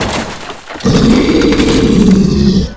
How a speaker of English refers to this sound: What made that roar?